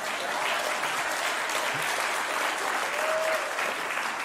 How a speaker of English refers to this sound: So can you extend a hand out to them? And clap for them, yes.